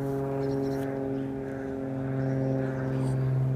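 A small propeller plane drones high overhead with a steady, buzzing engine hum that holds at an even, fairly loud level throughout, with no one talking.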